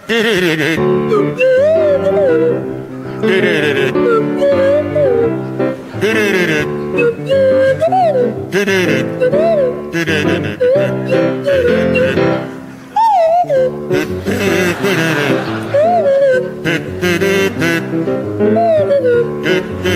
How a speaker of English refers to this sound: a rendition of … to feature Barry Cryer on the kazoo, Graham Garden on the Swanee whistle